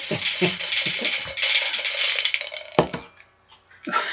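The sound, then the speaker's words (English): A rapid series of hard clicks and rattles, like dice tumbling and clattering together, runs for about three seconds, then a brief pause and a final short clatter. “I'm going to try and roll more quietly because it makes big jingling sounds.”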